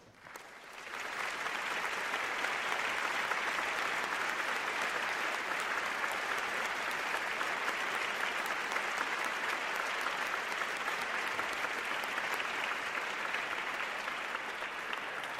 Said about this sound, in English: They're meeting on campus today, and they're demonstrating their commitment to fostering academic excellence by attending Honors Day in academic garb. I invite you, as they stand, to recognize them with a round of applause.